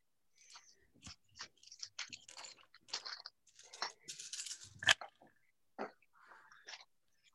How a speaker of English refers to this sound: Well, you see, I roll 8 dice, so I'm quite competent at this.